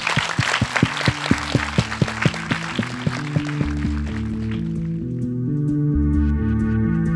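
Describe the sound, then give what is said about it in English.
An audience at an MPavilion talk claps to thank the speakers, a dense, noisy burst that fades after a few seconds while a steady, beat-driven tune with sustained tones rises underneath and takes over. “It would be great if we could thank them with a round of applause.”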